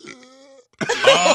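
A close, croaky burp with a steady, buzzing tone, followed after a brief pause by a louder, rougher guttural burst from the throat.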